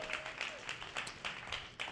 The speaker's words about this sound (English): Come on, clap if you love the Lakers.